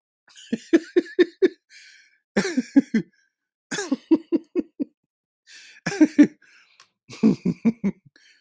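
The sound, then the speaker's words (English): Several fits of coughing into the elbow, each a quick run of four to six harsh, somewhat muffled bursts, fairly loud, with short pauses between the fits and no talking. “With the elbow cough.”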